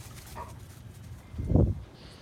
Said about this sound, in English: Kind of sounds like me having sex. Sounds like there's a dog involved as well.